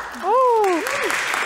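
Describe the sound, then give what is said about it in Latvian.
An audience at the Latvian Singing Teachers' Association conference bursts into steady, dense applause that swells quickly and holds at an even level, while a voice briefly rises and falls over the clapping. “Jā, aplausi mūsu podkastā parasti neizskan, tāpēc tas ir vēl jau vairāk interesanti”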